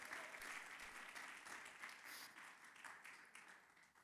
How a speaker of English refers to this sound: I think we need to give the Lord just a hand clap of praise right there. Right there. Right there.